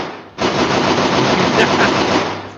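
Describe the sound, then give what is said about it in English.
Loud, rapid automatic gunfire erupts after a brief quiet moment and continues as a dense, unbroken burst of machine gun shots until the end. “Alright, this is where you just angrily do gunshots because your fucking dumb mic isn't working.”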